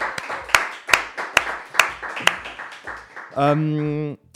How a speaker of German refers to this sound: Und aber ihr müsst klatschen jetzt einmal. Komm, wir klatschen. Das ist dann ein Jingle einfach. Ihr klatschen. Big round of applause.